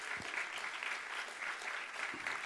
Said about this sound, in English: Come on, give them a great big hand clap today.